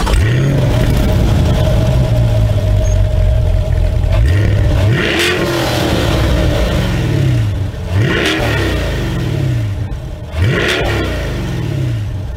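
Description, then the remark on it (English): A mid-engine sports car with 495 horsepower and four exhausts roars, its pitch climbing hard and then dropping with each of three quick gear shifts, loud and continuous with no talking. “This is 495 horsepower, 0 to 60 in 2.9 seconds. What a beautiful car.”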